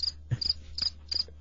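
Crickets chirp in short, high trilling bursts repeating at a steady pace, fairly quiet, with a faint low hum underneath and no voices.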